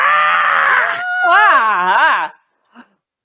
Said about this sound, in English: gives a blood-curdling scream